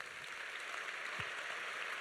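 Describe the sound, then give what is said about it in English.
A crowd claps steadily for two seconds, a dense, even wash of many hands with no single claps standing out and no voices, clapping for the Heavenly Father. “Clap for our Heavenly Father.”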